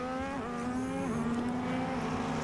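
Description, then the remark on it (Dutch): Formula 1 race cars scream past through a kink toward turn 14, their high engine whine stepping down in pitch twice as they shift or brake, loud and continuous with no voices. “Aan het sturen van de knik die brengt de auto's richting bocht nummertje 14.”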